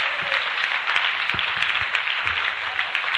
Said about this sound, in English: Why don't you put your hands together for the Lord? Oh. 12 souls. Come on, clap for Jesus. Amen.